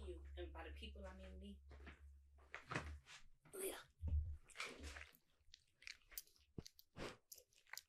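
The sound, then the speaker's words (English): A dog, Banksy, munches and chews with crunchy, irregular bites and wet mouth noises, while a low rumble and some speech-like sounds come and go. “Can y'all hear her munching around?”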